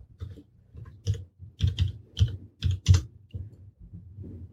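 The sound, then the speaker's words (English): Rapid clicking and typing on computer keyboards as several people browse the internet, irregular bursts of keystrokes with a few louder clacks, fairly quiet, no voices. “Everyone's clicking and looking at the internet.”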